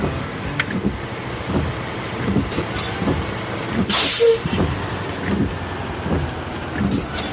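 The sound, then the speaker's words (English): Heavy rain pours down steadily in a dense, constant hiss, with a sudden louder whoosh midway through, like a gust or a burst of harder rain. No one speaks. “It's pouring down rain out there.”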